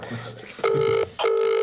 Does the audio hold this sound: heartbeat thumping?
no